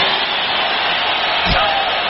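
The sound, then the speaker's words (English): A large crowd at a Donald Trump event cheers in a steady, dense roar that stays loud throughout, with no single voice standing out and a brief low thump partway through. “And the crowd goes on for like 45 seconds cheering like this.”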